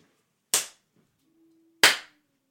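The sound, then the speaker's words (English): Two sharp, loud hand claps about a second apart, made to synchronise audio recordings, each a crisp crack with a short decaying tail, separated by near silence and a faint steady low hum. “It's just one big bang, and then you can synchronise it.”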